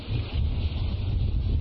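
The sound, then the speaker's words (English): Hurricane Gustav's wind roars steadily as the raised ocean's waves crash against and over a seawall about 9 feet tall, a heavy, continuous low rumble and hiss that never lets up. No one speaks. “So what I want to do is I want to show you, there's just a quick little video of Hurricane Gustav.”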